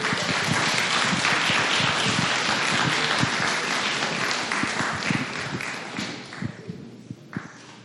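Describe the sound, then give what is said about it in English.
An audience applauds as the next speaker is introduced and comes to the microphone, a dense, steady wash of clapping that holds loud for several seconds, then thins out and fades, leaving a few scattered claps at the end. “Keep the applause going until the person takes the microphone.”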